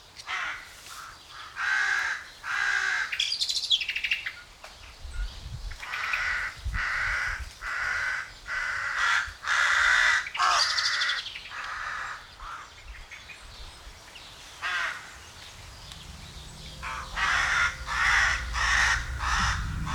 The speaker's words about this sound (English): It's a collection of little things that I want to give to you, like this recording that I made recently of some Danish crows squawking at me for being in their little patch of forest.